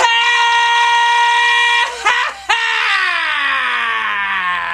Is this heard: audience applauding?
no